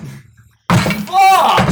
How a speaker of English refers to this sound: You hear the door slam.